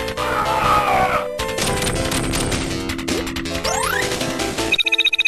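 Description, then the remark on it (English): A cartoonish villain's scream, voice work apparently lifted from the cartoon and sounding like Dr. Robotnik, rings out early amid loud, chaotic video game effects: crashing impacts, rising sweeping tones and, at the end, a rapid run of pulsing electronic beeps. “That scream does sound like Dr.”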